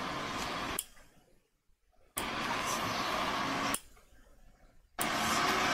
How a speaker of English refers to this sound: And it sounds like it's pretty windy there.